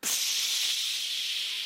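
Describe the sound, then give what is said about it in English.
A voice imitates a spray can with a single sustained hiss, a steady breathy rush of bright, high-pitched noise lasting under two seconds at even loudness. “Sometimes I wish I could get me some spray.”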